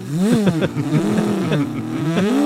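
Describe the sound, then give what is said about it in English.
A voice mimics a hot rod engine revving, a loud, buzzing vroom that rises and falls in pitch several times in quick succession, with no other sounds. “Did he go out on his hot rod? Yeah, he revved it the whole way.”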